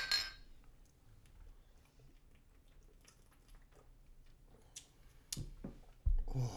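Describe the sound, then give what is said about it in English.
Glasses of Ninkasi Brewing Company Vanilla Otis Oatmeal Stout clink together in a toast, a couple of sharp, bright taps near the end after a stretch of quiet rustling and handling sounds. “You guys ready? I think we're ready. Cheers.”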